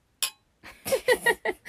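Glasses clink once in a quick, bright toast, ringing briefly, and then voices start talking right after.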